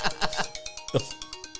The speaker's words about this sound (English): Someone didn't silence their phone. Boy. Is that an emergency? Maybe. Is it one of your kids? No. I'll take it on the next break